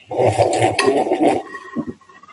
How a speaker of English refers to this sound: So we like to open the show with a bit of a coffee slurp.